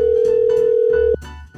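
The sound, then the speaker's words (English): A telephone rings on an outgoing call: one steady, mid-pitched electronic tone holds for just over a second, then cuts off abruptly, leaving faint background hiss. No one speaks. “Let's see if she answers.”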